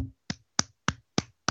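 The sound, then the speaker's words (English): A single person claps their hands five times at a slow, steady pace, each sharp clap distinct with short silent gaps between, no voices present. “I'm going to clap for you.”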